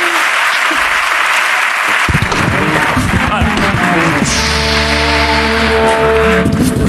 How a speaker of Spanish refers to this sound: Un aplauso para Pablo Ibarburu, por favor, que ha venido a saludar.